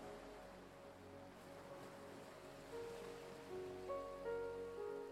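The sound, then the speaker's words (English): Soft, steady wash of ocean waves breaking against the shore, with gentle sustained musical tones drifting in over the surf toward the end. “Imagine yourself standing on the fine white sand and listening to the sound of waves breaking against the shore.”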